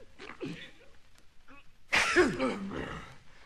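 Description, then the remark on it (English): A single loud sneeze bursts out after a couple of seconds of quieter murmuring sounds, its breathy tail fading over the next second. “You know what I think about this here disease? Give it back to the Asians and let them sneeze.”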